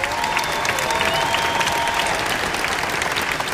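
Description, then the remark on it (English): A large crowd at Lakewood applauds steadily, a dense wash of clapping that stays loud and even throughout, with faint whistles and cheers rising above it, giving a welcome to the TV audience. “When you see yourself on the screen, can you give our TV audience a great big Lakewood welcome?”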